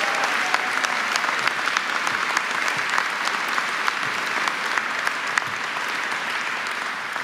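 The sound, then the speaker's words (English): An audience applauds steadily for about seven seconds, a dense wash of many hands clapping at an even level, with no voices breaking through. The applause honours the late mayor of Aurora, Steve Hogan, in his absence. “Let's give Steve Hogan a round of applause in absentia.”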